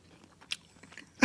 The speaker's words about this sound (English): Excuse me while I chew this jerky.